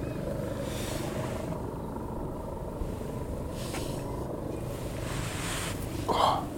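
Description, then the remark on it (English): A helicopter drones steadily over Wellington, a continuous low rumble that holds at an even, moderate loudness throughout, with a brief brighter rustle near the end. “I have a view over the entirety of Wellington right now, and I cannot see that fucking helicopter.”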